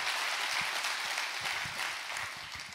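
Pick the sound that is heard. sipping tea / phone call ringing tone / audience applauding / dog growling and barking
audience applauding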